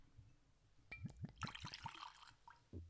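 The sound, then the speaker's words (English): Whiskey glugs from a bottle into a glass in a quick run of rhythmic gulping pulses, with a brief splashy rush in the middle, fairly loud, followed by a soft thump. “That was some theatrical pouring, man.”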